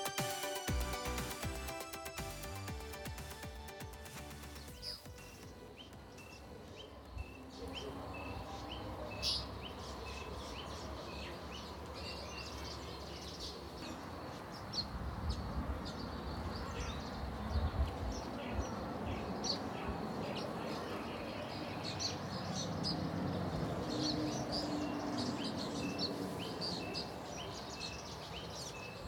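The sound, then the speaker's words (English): Outdoor ambience in a bird hide in South Africa, with scattered birdsong and chirps over a steady low buzz of insects, after a brief burst of tonal sound at the start; no one speaks. “Let me set the scene for you. I'm in a bird hide.”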